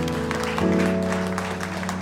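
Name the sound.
audience hand clapping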